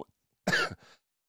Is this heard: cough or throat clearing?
yes